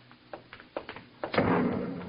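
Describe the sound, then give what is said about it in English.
A few short, dull thuds knock in quick succession, then a loud explosion from a ship bursts out and rolls into a sustained, rumbling roar that slowly fades. “No, that was an explosion.”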